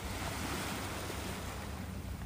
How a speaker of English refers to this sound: Oh, I love the waves. This is perfect.